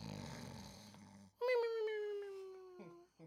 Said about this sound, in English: And then we gonna talk about our sleeper segment. Cue the snore.